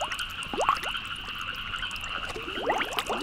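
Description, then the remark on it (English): Water sloshes and gurgles as someone in thigh-high waders wades through shallow marsh, with bursts of splashing near the start and again toward the end, no voices. “So that means we got to suit up in thigh-high waders, basically waterproof overalls, and go and get our feet wet.”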